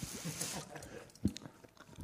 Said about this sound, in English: As he's chewing a jelly baby.